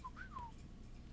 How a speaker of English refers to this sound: Minute six starts with … giving his signature whistle.